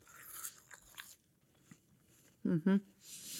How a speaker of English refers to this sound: See, the apple is the noisier of the fruit that I have cut up for us today. It has that crunch.